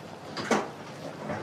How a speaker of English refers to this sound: just fucking smashed the door